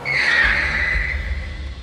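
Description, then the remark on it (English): A loud, sustained tire screech as police cars skid to a halt, the high squeal sliding and fading over a low engine rumble, with no voices: at least half a dozen Irish Garda cars, marked and unmarked, screeching up outside a bank in Ranelagh. “So I emerged from the bank to be greeted by at least half a dozen Garda cars, marked and unmarked, screeching up.”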